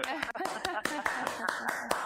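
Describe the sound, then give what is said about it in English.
Steady, brisk hand clapping, about ten sharp claps in two seconds at an even rhythm, with voices talking underneath. “We applaud you.”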